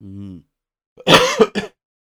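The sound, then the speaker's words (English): A short voiced throat-clearing hum, then a loud burst of coughing: a harsh rasping cough followed by two quick, sharper coughs, with no talking around them. “I said quickly and then I started coughing.”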